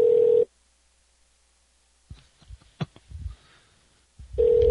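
An outgoing phone call is dialed and rings out with a steady ringback tone, a short burst, then a pause with faint clicks and line noise before the tone returns. There is no talking.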